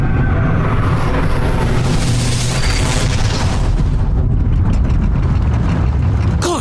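A loud, continuous rumble of a train and signals at Woking Railway Station, with heavy mechanical clanking and deep booming thuds over a dense low roar, no voices.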